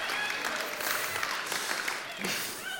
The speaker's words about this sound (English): Please don't clap. You'll get me going.